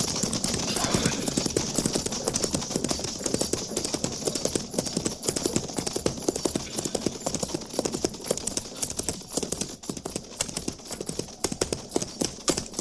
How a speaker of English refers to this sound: single rider approaching.